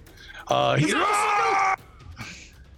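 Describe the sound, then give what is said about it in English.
A loud, strained scream from a character voice, held for over a second with a sharply rising, wavering pitch, standing alone over a quiet background that fades back in afterward. “He screams.”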